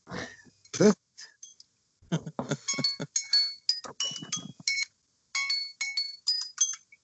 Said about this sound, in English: Oh, is that your alarm clock for the morning there